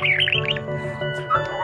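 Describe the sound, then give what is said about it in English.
A pet bird named Doc chirps and warbles in quick, shifting bursts of high tweets, steady over a low background hum, with no one talking. “That's Doc, our bird, in the background for this episode.”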